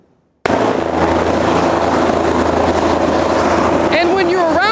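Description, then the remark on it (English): The Sky 5 news helicopter taking off from the roof roars to life after a brief silence, its engine and rotors making a loud, steady, rumbling drone, with wavering high whines rising and falling near the end. “Like, one, is it cool that this thing takes off from our roof all the time?”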